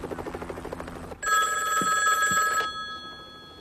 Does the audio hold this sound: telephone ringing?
yes